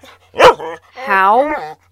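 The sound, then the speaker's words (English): A dog gives one sharp bark, then after a short pause lets out a longer, high-pitched yip that wavers and slides in pitch before cutting off. “Oh, I just have a way with dogs.”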